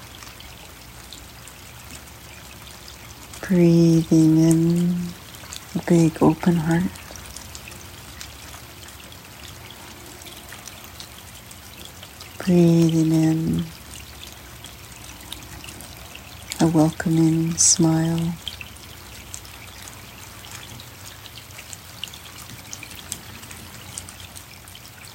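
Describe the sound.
Soft, steady rain falls with an even hiss that continues throughout, while a calm voice speaks a few short, unhurried phrases over it.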